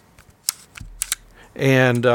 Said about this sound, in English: And I got the iPhone 6 and got the stylus case with the carousel. And that was cool. I was like, yeah, this is great. Now I have multiple lenses that stay in this little carousel, and I turn it, you can hear it.